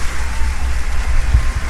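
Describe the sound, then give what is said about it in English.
A canned applause sound effect: a steady, dense wash of clapping that holds at an even, fairly loud level for under two seconds, with no voices over it. “Oh, he found sound effects. Applause reigns.”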